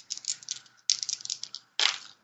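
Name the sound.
dice being rolled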